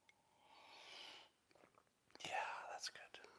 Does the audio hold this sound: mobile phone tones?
no